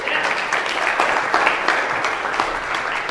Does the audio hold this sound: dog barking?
no